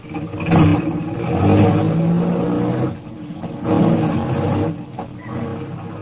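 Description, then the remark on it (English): A car engine rumbles and revs up in a couple of strong surges, then pulls away, its steady drone easing as it drives off. No one speaks. “We drove for about 20 minutes, and we stopped at a garage, a big garage”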